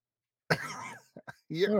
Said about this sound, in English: That's a cough button, dude. That's what professionals really do. I know what your burps like look like. Okay. You cough out of the side of your mouth.